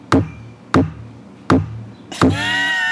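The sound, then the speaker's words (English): Four heavy, evenly spaced thumps like heartbeats picked up by a microphone, roughly one every 0.6 seconds, the last followed by a sustained ringing tone. No one speaks. “It's total heartbeats.”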